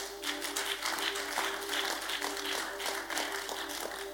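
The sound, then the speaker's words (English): An audience claps steadily throughout, a dense, even patter of many hands with no voices, while a faint constant hum runs underneath. “Yeah, I thought you were clapping.”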